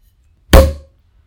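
A single sharp cork pop as a second bottle of sparkling wine is opened, loud, with a brief hollow ring that fades within half a second; no one speaks.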